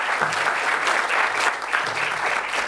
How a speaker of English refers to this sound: So we had two successfuls. Very well done, our successful pitchers. A round of applause for our successful pitchers.